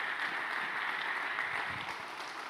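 A crowd applauds steadily, many hands clapping in a dense, continuous wash of sound with no pauses, holding an even loudness throughout.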